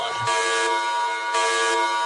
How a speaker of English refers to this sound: And you know what? In retrospect, the alarm noise is probably not the most appropriate one to play at the end of this podcast. Probably not.